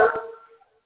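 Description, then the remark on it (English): A single sharp bark from a dog, fairly loud, starting abruptly and trailing off within a second, with no one talking. “The dog is chiming in as well tonight.”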